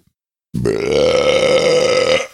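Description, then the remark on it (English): A single loud, drawn-out burp rumbles for nearly two seconds, resonant, starting abruptly after a moment of silence and fading at the end, with no talking. “I burped this way to not go into the mic, but yeah.”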